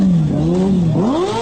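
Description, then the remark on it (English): A motorcycle engine revs loudly as a man pulls up on the bike, its pitch climbing, dipping briefly, then rising again in a steady throaty whine. No one speaks. “Guy on the motorcycle pulls up there.”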